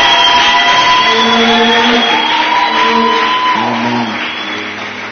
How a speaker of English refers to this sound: Can we give a powerful clap of offering?